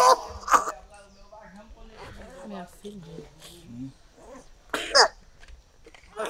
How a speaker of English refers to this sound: coughing all last night.